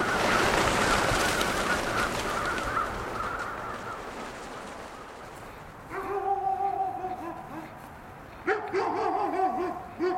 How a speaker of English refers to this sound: Pretty soon, the flock gets the message. As thousands of crows flee the trees, their wing beats sound like a rainstorm. And their deep black forms against the gray sky look like night itself taking flight.